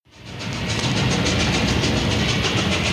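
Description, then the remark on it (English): A train rolls steadily along the tracks, a dense rumble with a rhythmic clickety-clack pulsing through it, rising in from the start and holding loud with no voices; part of a late-1950s record's imaginary train ride around America, here bound for Roseburg, Oregon. “a record on which he rode an imaginary train around America, a sort of travel log, if you will.”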